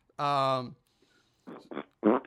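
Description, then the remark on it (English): A voice makes fart noises: one long, buzzy blat, then after a brief pause three shorter sputtering bursts, the last one loud. “And the head, when you see it and duck back away, is accompanied by fart noises.”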